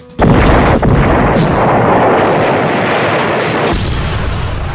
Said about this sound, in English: The movie industry is completely irresponsible for the way they portray explosions!